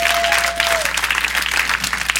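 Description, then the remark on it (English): Steady, dense applause from an audience for a man fills the whole stretch, loud, with a brief high tone sliding down near the start and no talking over it. “Now, neither, go on, give him a hand.”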